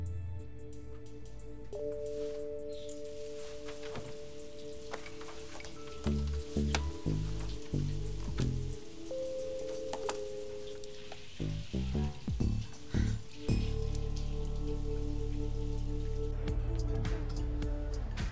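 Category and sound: household object, shower water running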